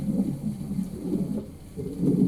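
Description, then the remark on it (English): A low, continuous rumble of thunder rolls on throughout during a thunder and lightning storm outside, deep and steady with slight swells in loudness, with no voices and no sharp cracks. “I know it's, thundering and lightning outside, but Daddy's here.”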